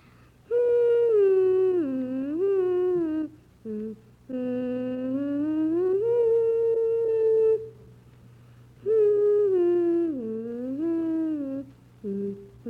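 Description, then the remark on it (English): A six-year-old boy hums the beginning of The Swan by Saint-Saëns in long, steady sustained phrases, the pitch gliding up and down between brief pauses for breath, with a low steady hum in the background. “Can you sort of hum the beginning for us?”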